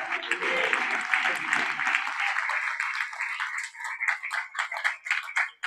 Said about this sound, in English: Can you clap your hands for the Lord?